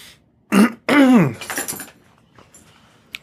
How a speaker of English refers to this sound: Like he had to clear his throat for that one.